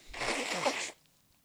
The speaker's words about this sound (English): I'm just gonna do a nose blow. Oh, you got the tissue tonight? I've just got one. I'm into my last tissue in a pack, so I'm gonna have to be strategic where I put the snot.